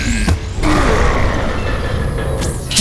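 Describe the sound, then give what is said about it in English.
A heavy door grinds and creaks as it's pushed shut, a loud, steady rumbling scrape lasting a few seconds, with a couple of sharper knocks near the start and end. “Okay, now shut the door!”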